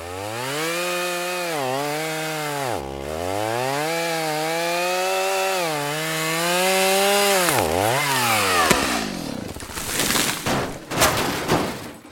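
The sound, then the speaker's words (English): A loud chainsaw whines through cuts on a tree near a house, its engine pitch rising and dipping twice, before breaking off into a burst of cracking, crashing wood as the tree comes down onto a car. “So in another bit of a panic, I got out my chainsaw and I felled this tree, which was near the house.”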